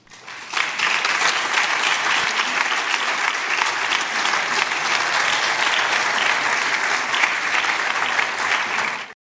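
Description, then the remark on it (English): Sustained applause from a large audience at the end of a speech, with archbishops present, a dense steady wash of clapping that swells in quickly and holds at an even, loud level for about nine seconds before cutting off. “I noticed at the end there, neither of the archbishops were clapping in the applause at the end there.”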